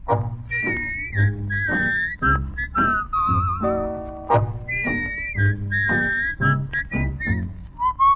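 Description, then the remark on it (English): A record plays a song intro where a bright whistled melody carries the tune in smooth, held phrases over a steady band accompaniment of bass and chords, with no singing or talking. “And really a recent record, too.”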